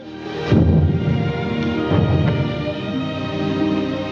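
A new German 77 artillery gun firing about 35 miles away: a few heavy, dull booms at uneven intervals over a steady low rumble that never fades between shots. Nobody speaks.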